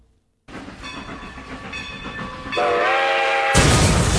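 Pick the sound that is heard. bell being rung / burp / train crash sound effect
train crash sound effect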